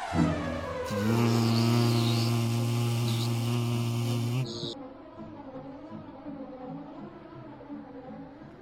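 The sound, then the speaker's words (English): A person mimics an insect with a loud, steady nasal buzz held for several seconds, then it cuts off abruptly and quieter talking follows. “Now do a buzzing sound when we leave.”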